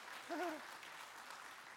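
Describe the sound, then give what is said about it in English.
A crowd of people claps steadily, a dense wash of applause that holds for the whole moment, with a brief vocal whoop rising out of it near the start. “Yeah, go ahead and clap.”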